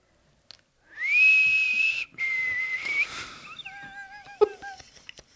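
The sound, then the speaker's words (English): A person whistles a short tune, starting with two long held notes and then shifting to a quicker run of rising and falling pitches. It is fairly loud and clear, with no talking. “As we were taking some of my classroom items to the library, we heard this exact whistle coming from down the hallway.”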